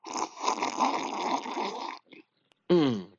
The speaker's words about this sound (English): Excuse me for 1 second as I take a sip of Colombian coffee.